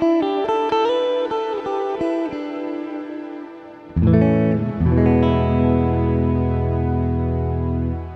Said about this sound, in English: It's just a really, really lovely reverb.